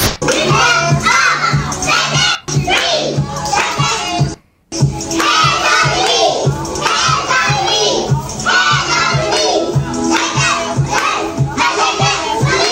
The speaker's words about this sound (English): And everybody's been watching this video circulate with these toddlers singing karaoke